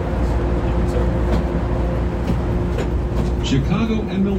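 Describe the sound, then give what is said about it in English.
Steady low rumble inside a Chicago transit train, with a brief tonal chime rising near the end as the doors close, with Chicago and Milwaukee as the next stop. “Doors closing.”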